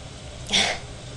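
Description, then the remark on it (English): A single short bark from a pet dog in the background, a sharp burst lasting under half a second, rises over a faint steady room hum. No one speaks. “If you can, try to ignore my dog barking in the background.”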